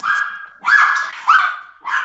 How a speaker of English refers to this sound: Sorry, I got some dogs going.